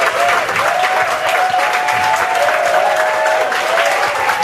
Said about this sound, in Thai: ปรบมือรับข้อที่4ก่อนนะครับ